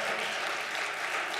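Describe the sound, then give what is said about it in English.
A crowd of people clapping their hands together to praise God, a steady, dense wash of applause that stays loud and even throughout without any voices standing out. “Would you praise God with a hand clap?”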